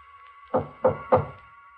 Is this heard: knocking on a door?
yes